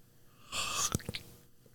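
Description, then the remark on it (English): Someone bites into an apple with a bright, crisp snap, followed by three or four quick, sharp crunches of chewing, making food sounds for a listener to guess what is being eaten. There is no talking. “Okay, I'm gonna make an array of sounds. You're going to guess what food I'm eating.”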